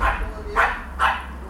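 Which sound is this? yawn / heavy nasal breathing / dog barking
dog barking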